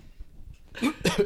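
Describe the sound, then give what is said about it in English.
Two quick, harsh, fairly loud coughs in succession, following a brief moment of quiet low rumble. “Because I'm coughing right now.”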